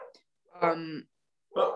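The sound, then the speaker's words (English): A dog barks twice, a longer drawn-out bark followed after a short pause by a second sharp one, with nothing else in between. “I also have multiple dogs, as you can tell.”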